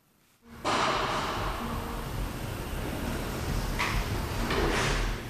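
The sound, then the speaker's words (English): After a brief hush, a heavy sliding metal jail door rolls with a loud, sustained grinding rumble, punctuated by a couple of sharper clanks near the end. “We wait to enter through heavy sliding metal doors.”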